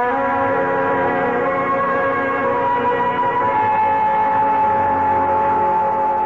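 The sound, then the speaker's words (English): A police car siren sounds steadily and fairly loudly as the car drives up, a sustained wailing tone that holds for several seconds with only a slight drift in pitch, and no voices are heard. “A police car's driving up.”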